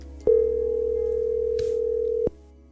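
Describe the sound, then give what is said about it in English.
A telephone ringing tone plays as one steady, clear electronic beep lasting about two seconds, starting and stopping with faint clicks over a quiet line hum. “So, this phone call happened the next day.”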